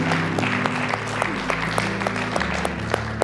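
An audience applauds steadily, a dense wash of many hands clapping with sharper individual claps popping out at an even, lively pace, over a low sustained hum throughout.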